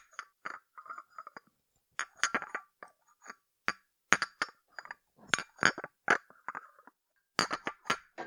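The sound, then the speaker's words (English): Porcelain china teacups that belonged to a grandmother clink together repeatedly in quick, irregular bursts, bright ringing taps with short rattly clatters between brief pauses, fairly loud against an otherwise quiet background. “And they're really clinky.”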